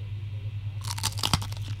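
A loud crunch as someone bites into a small, circular snack cracker with patterned ridges and a couple of holes through it, followed by a burst of crisp crackling chews over about a second, with a steady low hum underneath.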